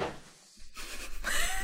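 Cats make noise: a soft knock and rustling, then a brief strained cry toward the end. Nobody speaks.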